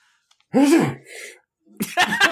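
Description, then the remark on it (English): A single loud sneeze bursts out with a voiced, falling tone and a softer trailing breath, followed after a brief pause by someone starting to talk. “Bless you.”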